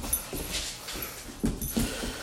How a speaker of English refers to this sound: He's going to start barking at me.